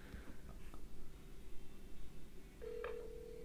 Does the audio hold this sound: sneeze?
no